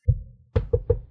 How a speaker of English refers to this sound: The happy but unfortunate couple head to the front door and lightly rap against the wood so not to come off too aggressive.